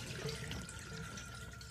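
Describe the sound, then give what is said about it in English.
Water drains away in a bathroom with a steady, rushing gurgle, a continuous wash of sound that stays fairly even and muted throughout, with no voices. “The bathroom was empty, but the noise of water draining continued.”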